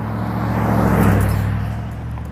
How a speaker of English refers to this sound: A lot of traffic this morning for a town of 400 or 500 people.